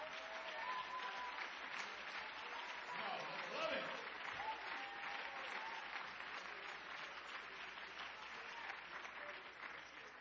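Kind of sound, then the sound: crowd, audience clapping hands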